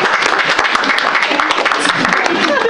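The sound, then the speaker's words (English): An audience breaks into steady, loud applause when asked to clap if they like trap music, a dense wash of many hands clapping at once, with a few voices calling out beneath it throughout. “Round of applause if you like trap music.”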